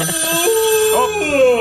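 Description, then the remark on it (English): A warbling, tonal phone ring with gliding pitches plays loudly and continuously for under two seconds, sounding almost like a howl or sung melody. “Let's make that our phone ring.”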